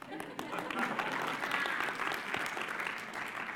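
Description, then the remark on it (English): An audience claps together in a dense, steady patter of many hands, holding a fairly loud, even level from start to finish with a faint murmur of voices underneath. “If somebody starts clapping, that's going to be totally cool.”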